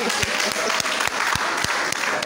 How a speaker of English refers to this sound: Hey, everybody, please clap for her.